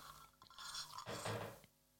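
A sip of liquid followed by a loud, wet gulp as it is swallowed, with a short burst of throaty, liquid noise in the middle before it fades. No one speaks.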